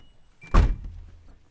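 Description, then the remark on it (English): A single solid car door slam as someone gets into a car parked by a front yard, a deep thunk with a short low rumble trailing off, heard alone against a quiet background. “I retreated to the warmth of the car and left the president's front yard, which in 3 months' time would be bustling with the feathery part-time inhabitants.”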